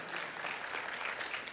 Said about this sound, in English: Y'all can clap for that.